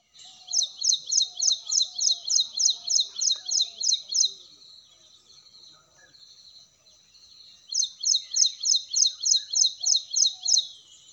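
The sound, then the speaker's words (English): An ashy prinia calls in two loud bouts of rapid, evenly spaced high chirps, about a dozen notes each, separated by a few seconds of quieter background with faint bird sounds. “You mean the Ashiprinia? That's a lovely bird. It's quite loud, so we hear it more often before we sight it.”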